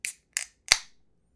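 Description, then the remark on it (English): A beer can cracks open: two quick metallic clicks followed by a sharper pop with a short hissing fizz trailing off. No voices, just the bright snaps of the tab. “So I did a fake bottle can opening or beer can opening for the intro. Here's a real one for you.”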